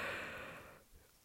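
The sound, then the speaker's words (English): A single breathy yawn, soft, exhaling airily for under a second before trailing off into near silence. “Just a little bit yawn, but yeah, it's a bit tough, but it can't be helped now.”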